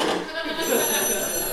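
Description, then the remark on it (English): A telephone rings with a continuous, bright electronic trill that holds steady for the whole moment, while a voice sounds faintly beneath it. “Now she's just answering a phone and hanging up.”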